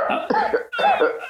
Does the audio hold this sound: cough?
yes